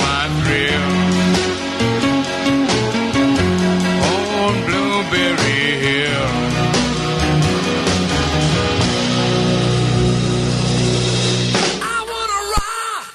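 A loud, upbeat 1950s rock and roll song with a steady driving beat, piano and a sung vocal line, playing continuously before cutting off abruptly near the end.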